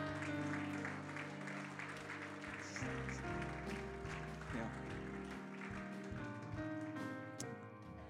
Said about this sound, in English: I wonder if we could give the Lord a hand clap of praise right now.